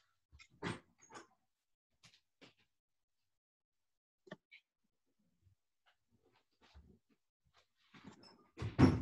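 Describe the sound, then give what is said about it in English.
Scattered household clatter, sharp clicks and thuds like a front door being opened and handled as someone is at the door, separated by quiet gaps and ending with a louder bump. No one speaks. “I'm having a little bit of trouble focusing because I hear that somebody is at my door, and God forbid any of my household should go to get the door while I'm in the middle of giving a Hagura.”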